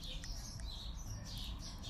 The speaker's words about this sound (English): What the fuck are these birds doing?